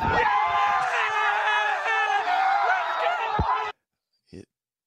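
A rowdy crowd of Buffalo Bills fans ('Bills Mafia') cheers and yells loudly on day two of the draft as Spencer Brown jumps onto a table and slams it, a dense wall of many overlapping voices with whoops, holding steady for about three and a half seconds before cutting off abruptly, followed by a brief faint sound.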